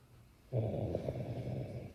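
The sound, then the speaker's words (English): A heavy, rough breath rasps in abruptly and holds steady for over a second, a labored wheeze that sounds almost like snoring, with no talking; a female struggling to catch her breath while awake, not sleeping. “That's her talk, breathing, just right here, not sleeping, just breathing. Just right there, you and I. Trying to catch a breath.”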